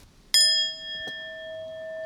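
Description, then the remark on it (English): A single bright strike of a brownie bell, rung for a brownie order, rings out sharply, its clear tones sustaining and slowly fading over a couple of seconds, with a faint tap partway through and no talking. “That's a brownie bell.”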